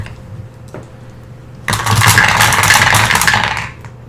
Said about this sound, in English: So 8d6? Yeah. So you get your dice. Roll that beautiful bean footage.